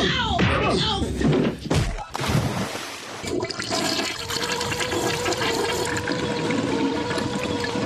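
A toilet flushes, opening with a loud clunk of the handle, then a steady rushing swirl of blue water that keeps gurgling as the bowl refills.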